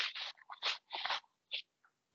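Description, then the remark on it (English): A spluttering coughing fit from someone who swallowed coffee the wrong way: several harsh, irregular bursts in quick succession, then two shorter, quieter coughs as it tapers off. No one speaks. “I was coughing.”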